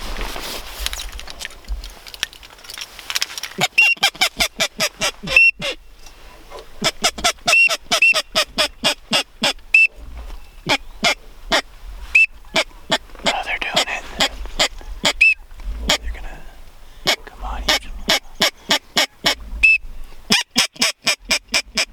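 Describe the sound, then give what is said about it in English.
Teal ducks calling in rapid bursts of short, sharp notes, with brief high whistled peeps mixed in, loud, while people talk quietly in the background. “Look at these teal.”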